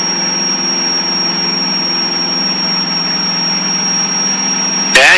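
A small aircraft engine, an IO360 or O360, drones loudly and steadily at full power during takeoff, a constant buzzing roar with a high whine on top, ending in a brief louder burst of noise.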